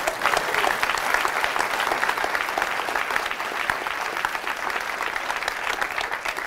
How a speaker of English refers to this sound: So thank you guys for coming. Let's clap it up for each other.